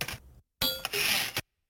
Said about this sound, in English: So I just use a kind of, in retrospect, terrible sounding typewriter sample.